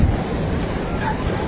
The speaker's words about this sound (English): your assessment of the waves? It's pretty big.